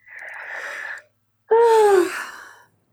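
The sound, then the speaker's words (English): A deep breath taken during a tapping exercise, drawn in with a soft airy hiss, then after a short pause let out as a louder, voiced sigh that trails off. Clear, no talking. “Big deep breath. Keep tapping and breathing.”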